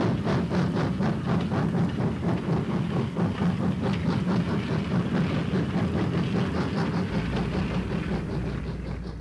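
A train rolls steadily along railroad tracks, its loud low rumble broken by a quick, regular clickety-clack of wheels over rail joints, continuous throughout.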